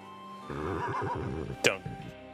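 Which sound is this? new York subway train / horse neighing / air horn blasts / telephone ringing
horse neighing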